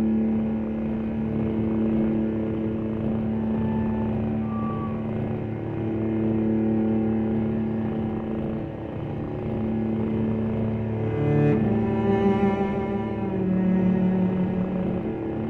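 Music composed for cats: slow, sustained tones over a steady low, rumbling drone, with held higher notes gliding in and a brighter change in harmony near the end. No voices.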